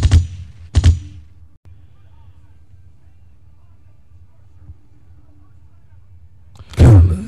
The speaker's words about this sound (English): Bring the gunshots out.